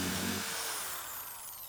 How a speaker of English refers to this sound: I need a new drill, y'all